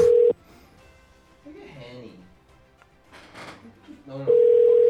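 A steady electronic ringback tone of an outgoing phone call sounds loudly at the start and again at the end, with people chatting quietly in the gap between the two rings; the call goes unanswered.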